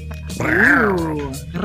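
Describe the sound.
A person lets out one drawn-out, growling vocal roar that swells and then fades, imitating a tiger. It is loud and lasts about a second.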